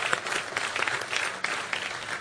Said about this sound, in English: I know the size of that applause is waiting to grow heavier and thicker as I introduce a prolific writer, international televangelist, also radio broadcaster of repute.